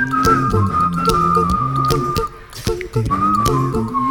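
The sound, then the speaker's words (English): A person whistles a clear, wavering melody over a steady musical backing with bass notes and sharp percussive hits, the whistle sitting prominently on top throughout. “Somebody can whistle and say.”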